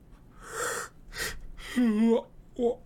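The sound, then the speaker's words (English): Sherlock Holmes yawns: a few breathy, airy inhales build into a drawn-out voiced groan that sags in pitch, ending with a brief sleepy murmur. “Well, it's quite exciting, said Sherlock Holmes with a yawn.”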